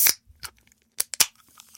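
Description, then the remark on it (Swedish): A fizzy drink can is cracked open with fingernails right at the microphone: a few sharp crisp clicks and snaps, then a louder double pop followed by a faint fizzing hiss, with no talking. “Vi öppnar en riktigt alltså, jag har nära längtat micken efter det här sedan jag började podda. Jag vill bara öppna i micken.”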